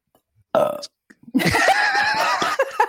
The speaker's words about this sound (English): If you're gonna break it, you might as well break it with a belch. I actually felt that kind of soothing. That was a good one. That was really good. A good belch or a good piece of dead air? Both. It wasn't a great belch.